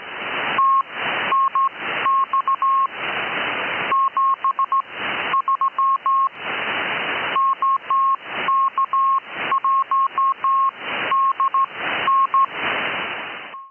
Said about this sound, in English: As you cruise into the bottom of the 10-meter amateur band, you may occasionally hear Morse code CW signals.